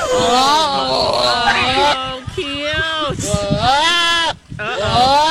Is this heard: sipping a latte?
no